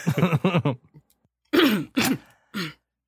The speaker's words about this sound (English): sniggers and then coughs and corrects herself.